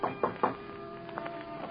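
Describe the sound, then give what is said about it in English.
Three quick, evenly spaced knocks on the door of a 10th-floor suite at the Lorma Hotel on Park Avenue near 70th, followed by a few fainter taps, over a soft sustained tonal background. “I thought it was my husband, Juan. But then, how could I think that since Juan would not knock?”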